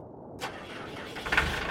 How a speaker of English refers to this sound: Right now, it's another cold spring day, and I'm riding a little Japanese tractor Dad bought for the cabin.